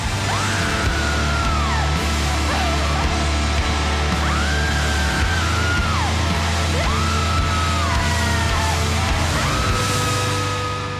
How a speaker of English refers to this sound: Because you are just out of body, screaming, wailing, you know. I mean, are you smiling when you did that?